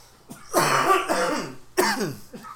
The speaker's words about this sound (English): My God. I have... I'm sympathy coughing.